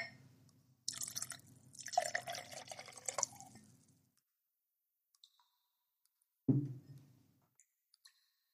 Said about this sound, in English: So I will be having a little bit of Maker's Mark. Let's pour some of this here. Let's get this going. Get the ASMR.